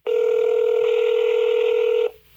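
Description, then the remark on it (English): A telephone line tone before a phone call to a Walmart store sounds as one steady, loud electronic beep lasting about two seconds, then cuts off abruptly, leaving faint background hiss. No one speaks. “Well, that part didn't really work out for me, but here's the phone call.”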